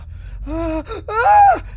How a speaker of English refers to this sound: Hear that? Sure did. It's gotta be close. That scream was no more than a block away.